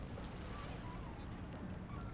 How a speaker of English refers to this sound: You can get close enough to hear the river lapping against the shore.